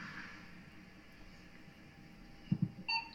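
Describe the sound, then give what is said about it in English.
A radio phone gives a short electronic beep near the end, a bright tone following two soft low thumps over a quiet background hum. It sounds fairly faint. “He's gonna have a hard time figuring out that radio/phone.”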